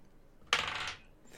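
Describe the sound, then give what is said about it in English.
Dice clatter across a hard table in one quick burst, a bright rattling roll that starts sharply and skitters for about half a second before settling, with no talking over it. “I actually need to roll something here.”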